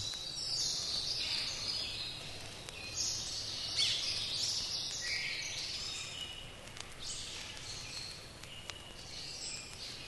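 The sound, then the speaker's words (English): Birds chirp and twitter continuously in dense, overlapping bursts, a lively outdoor chorus with a faint insect-like hiss beneath, steady and moderately quiet throughout. “I'm going to continue to let the birds chirp and chirp.”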